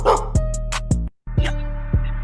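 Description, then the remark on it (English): A dog barks in steady rhythm as ad libs on a music track, four or so sharp barks spaced evenly across the beat, loud and up front in the mix, with a brief drop to silence midway. “The dog is featured on the track. Yeah, the dog is doing the ad libs, bro.”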